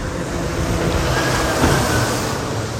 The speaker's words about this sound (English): Sorry, that was a big lorry just went over the road.